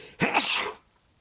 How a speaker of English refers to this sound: I'm going to sneeze, and I did.